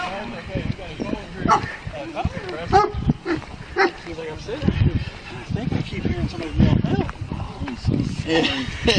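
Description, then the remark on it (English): A dog barks in repeated, uneven bursts, followed by the bleating cries of a very upset goat in Enid, loud throughout, with busy overlapping calls and little quiet between them. “It's a dog and then the goat.”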